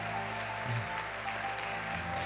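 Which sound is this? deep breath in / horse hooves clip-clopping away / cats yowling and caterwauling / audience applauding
audience applauding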